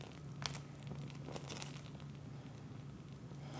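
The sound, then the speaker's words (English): Faint, sparse crackles and soft pops from a burning candle with a very bright flame, lit while setting intentions before pulling a tarot card, a few irregular snaps standing out over a low, steady hum, with no voices. “I always try to set the intentions before I pull a card, but this time I'm going to actually record it. So you can hear the crackling. The flame is very bright.”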